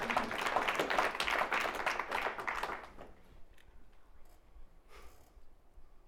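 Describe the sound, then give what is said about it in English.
An audience claps and applauds in a dense burst of many hands that fills the room for a few seconds, then quickly dies away to a quiet murmur with scattered faint claps. “Oh, if we're going to clap, you're going to clap in this place.”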